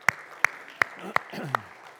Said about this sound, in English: Come on, you can clap.